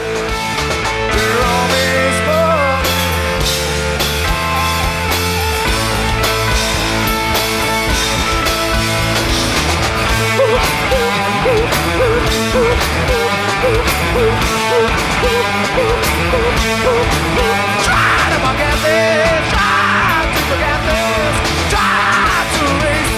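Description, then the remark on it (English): A loud, dense live rock performance with full band driving hard, distorted guitars and pounding drums, while a lead vocalist shrieks and yells over the top throughout, shrieking especially toward the end. “shrieking on the vocals of this towards the end, and the entire band is getting to rock out behind him, and there's a really good moment.”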